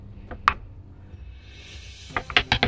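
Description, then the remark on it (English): Dice are thrown off the table and clatter in short, sharp clicks: one crisp knock, a brief lull, then a rapid burst of bouncing, rattling taps as they tumble and skitter across a hard surface and across the room. “Just throw the dice off the table.”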